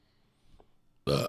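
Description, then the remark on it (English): A single loud, deliberately worked-up burp erupts abruptly after a moment of quiet, a short throaty blast lasting about a quarter second before cutting off. “Yeah, for all those listening, we just spent about 10 minutes trying to work up a burp to start the show for some reason.”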